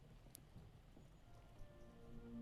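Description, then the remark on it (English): Horses' hooves of troops riding into the courtyard outside a manor house clop over stone cobbles in a steady, busy clatter, joined near the end by a sustained tonal hum, with no voices present. “You hear the rolling of wagons, the clappering of horses' hooves on stone cobbles.”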